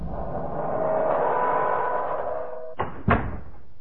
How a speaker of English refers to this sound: He pushed them into the dark, windowless cell and laughed cruelly as the door slammed into place.